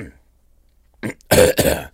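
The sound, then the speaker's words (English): Someone clears their throat before speaking into the phone: a short rough burst, then a longer, louder two-part rasping grunt, with brief silence before. “I'm just clearing my throat for speaking into the phone.”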